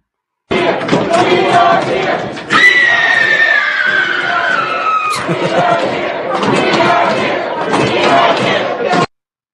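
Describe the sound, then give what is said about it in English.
A crowd of young protesters screams at the top of their lungs, a loud, dense wall of shouting voices with sustained high-pitched yells rising above the din, continuing throughout without pause. “Yeah, so screaming out the top of their lungs, that's not going to really get you what you want, man.”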